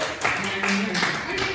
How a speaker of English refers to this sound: round of applause for the Puerto Rico.